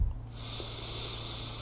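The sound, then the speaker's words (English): A long, steady, deep breath drawn in through the nose, a soft airy hiss lasting over a second, quiet, with a faint low hum underneath and no talking. “Breathing in deep, in through the nose”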